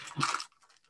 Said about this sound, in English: I'm still chewing. What I'm going to say is bite in far enough that you get the white chocolate chunk.